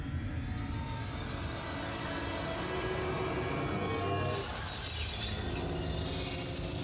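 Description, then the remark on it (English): A continuous, shrill screeching of screaming glass in a Doctor Who audio drama grinds and rings over a low rumbling bed, swelling into a brighter, harsher shriek partway through and staying loud to the end, with no voices. “The glass is screaming.”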